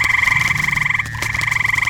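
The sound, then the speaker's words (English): A dense, continuous chorus of deep, squealing croaks from a swarm of bat-winged toads in a castle corridor pulses rapidly and steadily, with a brief dip before resuming just as loud, no voices present. “It's a squeal not unlike a rodent, but deeper, somewhere between a squeal and a croak.”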